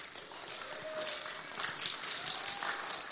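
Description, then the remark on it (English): A crowd applauds the worship team steadily, a dense wash of many hands clapping at once with a few whistles and cheers rising over it, sustained throughout. “Wow, that was a great clap.”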